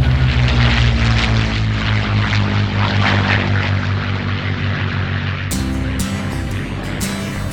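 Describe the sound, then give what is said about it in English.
A loud propeller airplane of Big Bubba's Flying Airplane Service drones steadily with a throbbing engine hum and whooshing wind noise. Partway through, the engine tone shifts and takes on a harsher, rattling edge. No voices are heard. “Whether you got a vacation plan to go over tops of mountains or cross some cornfields, we got the plane just for you.”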